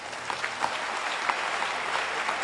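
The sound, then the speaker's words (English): An audience clapping their hands together for all the men of God (pastors, ministers, shepherds) in sustained, dense applause, a steady wash of many overlapping claps with a few sharper ones standing out. “Clap your hands for all the men of God.”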